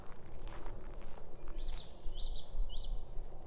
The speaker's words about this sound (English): Oh, I got it. A common yellow throat. A small warbler, olive green and sandy with the exception of a bold black mask topped with white trim and an intensely yellow throat.